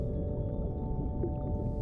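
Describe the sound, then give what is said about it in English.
Dolphin calls drift through a steady underwater rumble, with sustained tonal whistles and a few short chirps rising above the murky background throughout, no voices present. “Miss Dolphin is one of the friendliest sea creatures in the whole ocean.”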